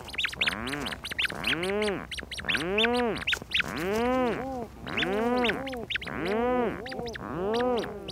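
Rhinoceros auklets, medium-sized dark gray duck-like seabirds related to puffins, call repeatedly at night at their colony in the Strait of Juan de Fuca off the Pacific coast. Each harsh, groaning note rises and falls in pitch, and the overlapping birds form a dense, continuous, rhythmic racket with no talking.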